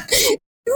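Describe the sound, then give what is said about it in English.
A voice imitates a droid character's hacking cough, like a terrible COVID-19 cough: two harsh, raspy bursts separated by a brief silence, loud, with no other talking. “And a hacking cough. He's got like a really terrible COVID-19 cough to him.”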